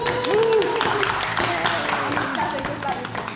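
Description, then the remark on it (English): A group gives a last round of applause at the close of an EMTM programme, thanking Girona, with steady, dense clapping that runs throughout while voices call out and cheer over the claps. “But just thankful for everybody, and just, yeah, last claps.”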